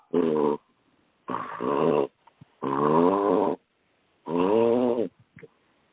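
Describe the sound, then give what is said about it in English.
A French bulldog sitting by the speaker snorts in four loud bursts of rough, buzzy breathing, each lasting about a second, separated by short pauses with a few faint sniffs between them. “I've got a French bulldog who's sitting here snorting.”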